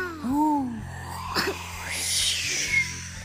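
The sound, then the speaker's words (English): A child's voice imitates howling wind: a short, wavering hoot that rises and falls in pitch, then a longer breathy, hissing whoosh, moderately loud, with no words. “Can you make a howling sound for me?”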